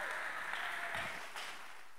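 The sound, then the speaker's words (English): An audience claps their hands together in a dense, continuous burst of applause that holds steady for about two seconds and eases slightly toward the end, with no voices heard. “Anybody clap in your hand, because this thing is about to spread.”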